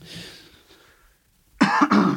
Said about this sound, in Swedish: Pinsamt att du hostar här i sändningen.